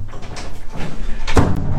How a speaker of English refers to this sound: Stupid door.